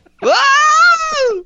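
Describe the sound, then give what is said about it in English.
The Wilhelm scream sound effect: a single loud, strained male yell that jumps up sharply in pitch, holds, then slides down over about a second and a quarter. “It's the Wilhelm, the Wilhelm scream.”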